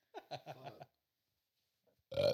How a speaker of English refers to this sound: Ooh, that was a Henny burp.